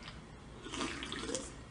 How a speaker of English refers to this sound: Well, oh, that's there was just something nasty about that slurp.